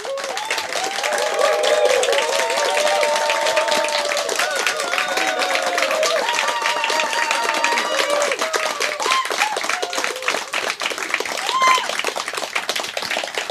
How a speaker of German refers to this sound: Das war ein ziemlich ordentlicher Applaus.